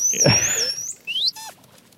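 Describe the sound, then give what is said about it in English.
A video game dolphin, placed in an aquarium tank, whistles and chatters in a series of high, sliding squeaks and chirps, fairly loud, with a brief rising whistle near the end and no talking. “Yeah, even whistle.”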